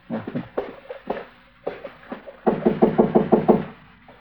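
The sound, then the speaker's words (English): Someone knocks on a door: a few slow, separate raps, then a quick run of about seven firm knocks in a steady rhythm, fairly loud, with no talking. “All right, go ahead and knock. Let's get clear before the door opens up.”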